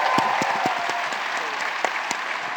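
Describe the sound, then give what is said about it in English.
An audience claps steadily, a dense wash of many hands with a few sharper individual claps standing out, sustained at an even loudness throughout. “yeah, you can clap.”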